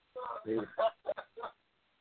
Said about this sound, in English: Yeah, that was Ms. Harvey's chicken.